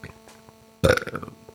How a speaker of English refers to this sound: Well, that burp just tastes terrible.